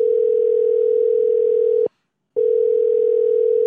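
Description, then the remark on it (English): A loud, steady telephone dial tone, placing a phone call, hums continuously, breaks off for about half a second of silence, then resumes unchanged. No voices are present. “Let's give the star of episode number 8, Joshua Beard, a phone call.”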